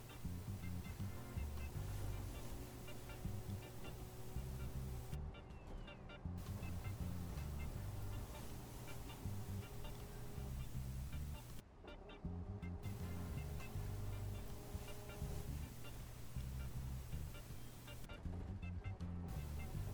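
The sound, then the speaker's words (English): A steady, loud engine drone and road rumble fill the cabin of a moving bus passing through a village, with a constant low hum and wind noise that barely changes throughout. “The bus now passes through a village.”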